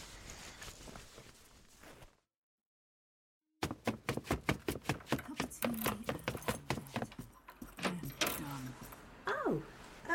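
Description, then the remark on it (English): Keys jangle and clink in a rapid string of sharp metallic taps after a moment of silence, loud, with a brief voice near the end. “Got the keys? Yeah.”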